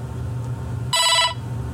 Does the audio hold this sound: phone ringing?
yes